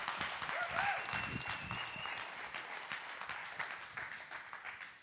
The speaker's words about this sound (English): you guys clap so much more when there's like an army of you. It's like 50, you're like, we're not touching our hands together.